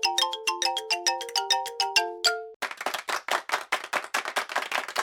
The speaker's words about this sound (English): Somewhere in the hotel room, I can hear my cell phone ring.